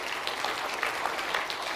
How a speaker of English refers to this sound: Let's have a big round of applause for everyone who's a part of that, for the leaders.